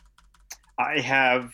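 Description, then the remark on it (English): Quick, light clicks of furious typing on a clicky mechanical keyboard, picked up by the microphone, patter for under a second, then a loud, drawn-out voice cuts in and covers them. “I have a clickety-clack keyboard, and it doesn't come up on Discord, but it does come up on my microphone”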